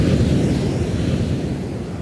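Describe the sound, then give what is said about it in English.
A loud, steady rush of air roars throughout, deep and rumbling like a powerful gust blasting, with no voices and barely any change in intensity over two seconds. “A loud, loud gust of air clouds the screams of awe and fear around you until it's all you can hear.”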